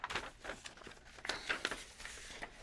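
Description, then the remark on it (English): Paper rustles and crinkles in short, irregular bursts of crackling, as if a sheet is being handled and folded, fairly quiet with no voices. “I need a piece of paper. Here, you can have this one.”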